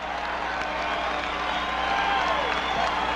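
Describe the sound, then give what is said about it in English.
A large crowd at 4 o'clock in the morning roars with sustained cheering and applause after Carter is projected winner of the presidential election, a dense continuous wash of clapping and shouts at steady loudness throughout. “This tremendous crowd at 4 o'clock in the morning represents hundreds of millions of American people who are now ready to see our nation unified,”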